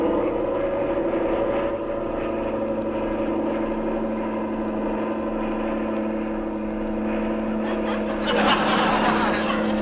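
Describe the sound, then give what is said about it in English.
A steady, loud airplane engine drone with strong harmonic hum runs throughout, swelling and roughening near the end as the engine strains harder while the pilot pushes forward on the control stick to put the plane into a power dive. “Okay, I'll push forward on this stick and see if you'll go into a power drive, and we'll see what'll happen.”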